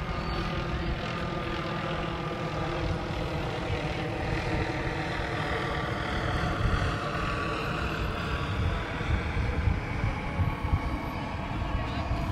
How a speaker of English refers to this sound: That was that darn helicopter again.